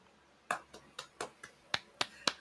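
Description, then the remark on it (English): A short burst of about eight sharp, crisp hand claps in a quick, slightly uneven rhythm, with no voices underneath. “Again, we have a clapping thing, but actually, you know what?”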